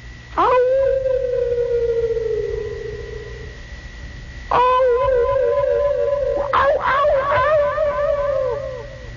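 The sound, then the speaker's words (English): Eerie, echoing howls of unfriendly animals in a vast primal wilderness, made with a partial echo chamber: one long steady wail that slowly fades, then a second howl joined by several overlapping, wavering cries rising and falling in pitch. No one speaks. “And it is the echoing sound of unfriendly animals.”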